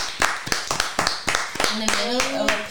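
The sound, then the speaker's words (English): Brisk, steady hand clapping in tribute to a woman, about four sharp claps per second throughout, with a voice joining over the applause in the final second. “So, just want to clap for her.”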